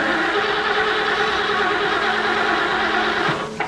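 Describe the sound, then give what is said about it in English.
The president's car engine runs with a loud, steady rumble, then falters and cuts out at the very end as the car runs out of gas. “Looks like the president's car is out of gas.”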